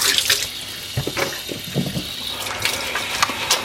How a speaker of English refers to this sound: Let's wash my hands so that I can turn the recording off.